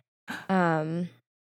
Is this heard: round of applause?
no